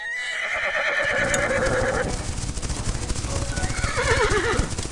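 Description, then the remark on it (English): A horse whinnies loudly in shrill, wavering cries while a rapid, dense clatter of hooves drums underneath as a group of robbers on horseback rush forward, with a second neigh near the end. “Suddenly, a group of robbers rush forward on horseback.”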